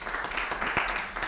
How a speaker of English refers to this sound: And I want to give you a hand clap tonight.